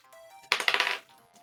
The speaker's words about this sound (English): Excuse me. I dropped a dice. Is this on a 100? It is, yeah.